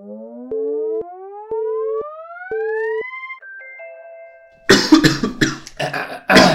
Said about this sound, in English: Some water. Cough the whole time. Seriously, like I did one track workout. It feels like I ate 25 frogs.